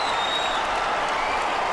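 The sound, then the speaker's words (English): A big arena crowd in Morgantown roars and cheers in a dense, sustained wall of noise, with applause and whistles rising above the steady din, loud and continuous throughout, as the reserves, including walk-on Spencer Macke, come into the game. “The reserves in, and the crowd is going to go nuts.”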